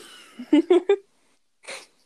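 Three quick, harsh coughs in a rapid burst, followed after a short pause by one more raspy, breathy cough. No one speaks over them.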